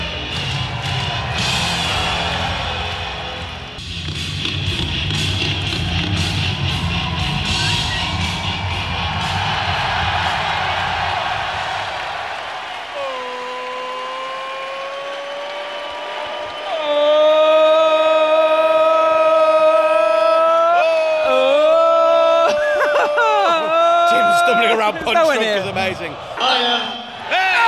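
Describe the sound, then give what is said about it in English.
A wrestling arena crowd cheers in a dense, roaring wash for about thirteen seconds, then the roar drops away beneath loud, sustained music notes that rise and bend toward the end. “We're going to keep getting interrupted by music and listen to this crowd.”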